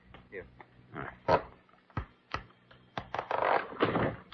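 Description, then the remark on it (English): Wood creaks and scrapes in uneven bursts, with a few sharp clicks and knocks, as a thin false-bottom panel is pried loose from the bottom of a desk drawer with a letter opener. “Can you take out that false bottom, Dr. Kildare? Yes. Hand me that letter opener, please.”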